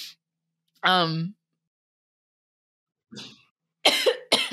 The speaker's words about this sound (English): Oh, and so is the cough.